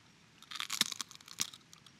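A crisp ASMR crunch of biting into an apple, with a burst of sharp crackling snaps followed by a second bite-like crack, all fairly quiet and with no talking.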